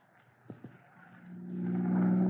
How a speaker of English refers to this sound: I never dreamed to be speeding through the streets in Chief Cody's own car one day. I never dreamed I'd be driving it,